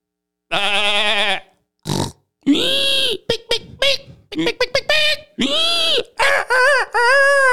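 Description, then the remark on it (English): A pig grunts and squeals in a loud, irregular run of short bursts, some nasal and pitched, with brief pauses between them. “Hey there, is that a pig?”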